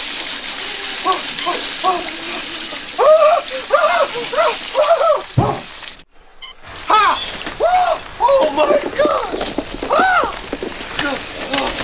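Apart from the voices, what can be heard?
shower water running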